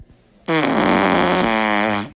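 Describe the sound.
A single loud, sustained fart noise blown through cupped hands against the mouth, buzzing and raspy with a low, steady pitch that dips once midway, lasting about a second and a half.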